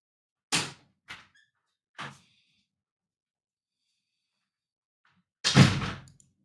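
door opening and closing

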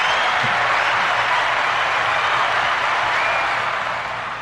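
round of applause

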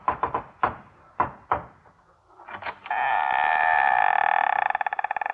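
knocking on a door

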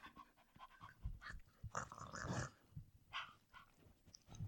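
dog panting

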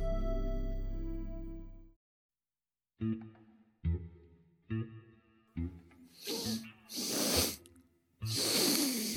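person sniffing

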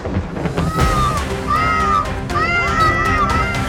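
cat meowing

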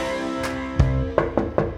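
knocking on a door

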